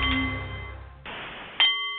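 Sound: nepalese meditation bowl chiming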